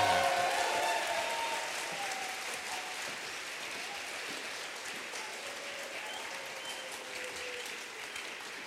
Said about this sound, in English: Christine Burrows is coming up now. Clap loudly, please.